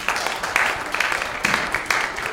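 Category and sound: crowd, audience applause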